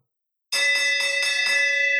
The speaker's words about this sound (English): The bell rings. Here we go.